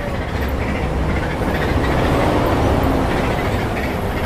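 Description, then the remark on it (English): A steady, loud rumble of a moving passenger train heard from inside the carriage, travelling towards Santa Cruz from Majuera towards the Deodoro Olympic Zone, with dense low-frequency roar and faint rattling, continuous throughout with no speech. “We're on the train towards Santa Cruz from Majuera towards the Deodoro Olympic Zone.”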